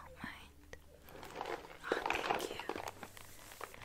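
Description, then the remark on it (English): Gift wrapping paper on a wrapped present, printed in red and gold with shining stars, cupcakes, cookies and candy canes, crinkles and rustles as it is handled, with soft crackling that swells louder for a second or so in the middle before settling back to quieter rustles. “Could I take a closer look at that wrapping paper?”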